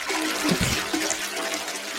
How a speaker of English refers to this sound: Oh, the toilet flush noise.